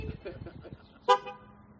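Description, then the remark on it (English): A single short car horn toot sounds clearly and loudly during a sermon, right after a stretch of indistinct talking, then fades into quiet background hum. “We got our honking amen in corner over there.”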